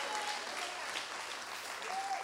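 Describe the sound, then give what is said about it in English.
An audience at a weekend church service gives Jesus a great big hand clap, a steady, dense, continuous wash of many hands clapping at full volume with no pauses, plus a faint high tone briefly rising through it. “Well, one final time this weekend, give Jesus a great big hand clap all over the place.”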